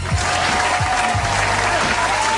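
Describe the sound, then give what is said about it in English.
A studio audience applause sound effect: steady, dense applause, many hands clapping at once in a continuous wash of sound that stays loud and even throughout, with no talking over it. “I invented this applause.”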